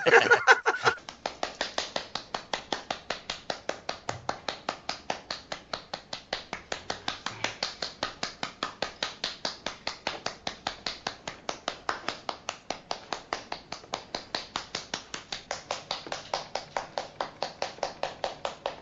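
One woman claps steadily on her own in a big basement club, a crisp, even beat of roughly four claps per second that keeps going without a break for nearly twenty seconds, with no voices over it.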